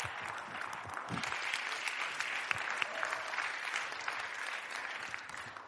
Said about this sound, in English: I want somebody to give God a clap off and a shout of praise. Come on.